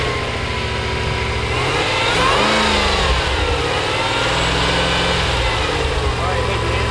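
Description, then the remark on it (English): A supercharged engine revs up loudly, its rising roar topped by a high, whining tone; the sound stays dense and steady throughout, with voices faintly underneath. “You don't even need to hear the exhaust note. You hear the supercharger.”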